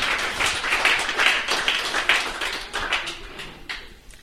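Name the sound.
audience applause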